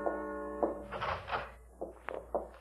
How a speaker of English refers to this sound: Steps first, then a door. But I heard nothing. Nothing but the wind outside. And then I heard the steps.